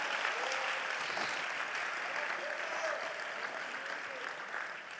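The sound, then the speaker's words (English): Sustained applause from an audience during a sermon, clapping for Jesus, a dense, steady wash of many hands clapping at once, holding at an even loud level for several seconds with faint voices mixed in underneath. “Clap for Jesus, somebody.”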